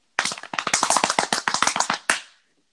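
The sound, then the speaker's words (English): A quick drum roll slapped on thighs: about twenty sharp, fleshy smacks in a fast, slightly uneven rhythm for two seconds, ending in one louder final slap that rings out briefly. “Did you slap your ass? What was that? My thighs? My very firm thighs.”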